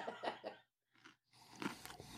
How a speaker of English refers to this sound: I'm gonna chew something and see if you guys can identify what it is, like, while we go.